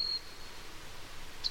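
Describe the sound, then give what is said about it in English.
A male Costa's hummingbird, a bird weighing 3.6 grams, calls: a thin, very high-pitched whistle at the start, then one short sharp high note near the end, both faint over a soft steady hiss. “A male Costa's hummingbird weighs 3.6 grams, which, given its voice, is maybe just as well.”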